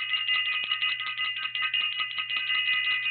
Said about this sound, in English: Ring the bell for self-invested.